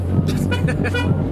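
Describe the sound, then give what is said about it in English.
A car horn honks in a quick series of short, bright toots over a steady low engine rumble as a vehicle passes by. “it's the clown car passing by.”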